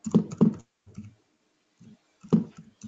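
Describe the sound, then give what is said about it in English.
Keys clack on a computer keyboard as a website address is typed in, in short uneven bursts: a few quick strokes, a pause, then more taps, moderately loud with no voices. “You just type it in, or I can copy and paste it for you.”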